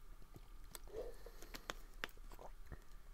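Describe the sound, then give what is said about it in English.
A quiet sip from a drink: soft slurping and wet mouth clicks, then a gulp, with a few faint smacks afterward and no talking. “We're going to go with the stats once I take a sip.”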